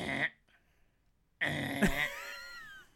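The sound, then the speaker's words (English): A person imitates a platypus: a brief guttural grunt, a short pause, then a longer, loud, rasping growl-like call whose pitch wavers and slides downward before trailing off. “What would be your example of a platypus noise?”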